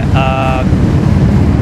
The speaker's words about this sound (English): I'm sorry, wait for the motorcycles. It's like a motorcade.